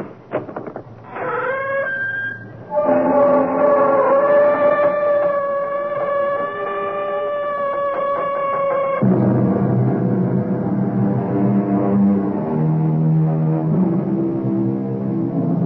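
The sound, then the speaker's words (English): The creaking door of the CBS Radio Mystery Theater swings open with a long, loud, wavering squeal that shifts in pitch, then settles into lower, rougher groaning creaks. No voices are heard. “Come behind the creaking door and leave your good judgment and reason outside.”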